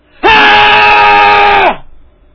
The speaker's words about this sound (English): Should I scream now? Yes, sir.